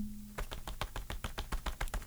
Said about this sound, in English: I'm thumping my chest.